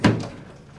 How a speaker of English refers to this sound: And they remember a rainy May day like this, when a badly dressed delegation went up to Isaac Murphy's house, knocked on his mahogany door, stood a while before Isaac's wife decided to open it.